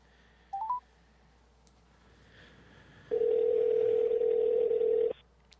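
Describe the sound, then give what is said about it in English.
A phone dials out with a quick burst of three short keypad beeps, followed after a pause by one loud, steady ringback tone lasting about two seconds. No one speaks. “while I try to pull up Mark's number. Here we go. Turn the phone back up.”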